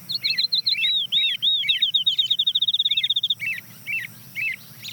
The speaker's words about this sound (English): You can hear some birds in the distant background, but the next bird to join is a field sparrow.